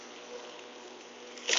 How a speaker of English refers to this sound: Let's fire up the lawnmower. Ah, there we go. The joyous sound of a lawnmower. Now, I'm in my back garden at the moment. Just trying to crunch through some of this massive undergrowth.